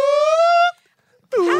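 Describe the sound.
A voice imitates an old-fashioned car alarm, holding a steady, bright wailing tone for under a second, then after a short gap starting a second, warbling call that bends downward.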